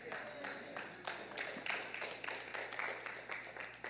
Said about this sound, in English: Thank you for your round of applause.